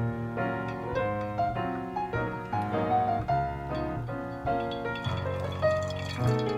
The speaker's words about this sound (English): So while you've got the coffee dripping here